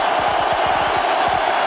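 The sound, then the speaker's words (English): A dense, steady roar from a large stadium crowd at an American football game, cheering and yelling together at full volume with no break to disrupt the opposing offense, a wall of voices filling the whole moment without any single speaker standing out. “Crowd trying to make it as difficult as possible down there for Stewart.”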